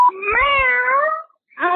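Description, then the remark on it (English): A cat, recorded on a voicemail message, lets out a long, drawn-out meow that wavers in pitch, then after a brief silence starts another meow. Loud, with no talking. “I mean, if a fucking disobedient cat can do it, you can do it too.”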